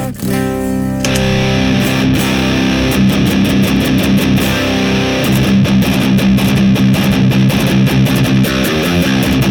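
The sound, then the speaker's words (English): A clean electric guitar tone through a Justice FX pedal into a Rev 412 cabinet driven by KT88 power tubes, volume at 11 o'clock, gain maxed, frequency sweep at 2 o'clock: a ringing chord opens, then a steady, fairly loud run of picked chords and notes with quick, clipped attacks. No voices. “Here's the clean.”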